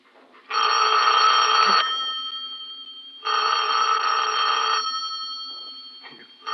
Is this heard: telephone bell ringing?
yes